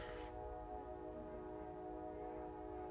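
A train whistle blows in one long, steady, sustained tone across the whole stretch, layered over a low rumble of rail noise, fairly loud.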